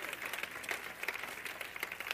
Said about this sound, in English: Is everyone happy? Come on, give them a hand clap for 2014.